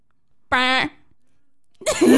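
Quiz buzzers sound: a short, loud, raspy buzz with a steady harmonic tone, followed after a pause by a second harsher, noisier burst that starts abruptly and runs to the end.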